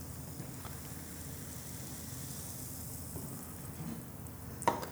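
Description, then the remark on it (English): Soda pours between glasses in a steady, hissing fizz, like light rain or sizzling, holding even for the whole stretch. A single sharp clink or tap cuts in near the end. “Yeah, I'm just pouring it between glasses.”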